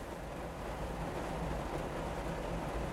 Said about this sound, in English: Just making observations as I go along, waiting for this stupid rain to be over so I can get out and walk around Newbury Comics and then probably Borders.